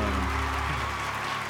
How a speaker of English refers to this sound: I wish that clapping hands would happen every time someone says my name.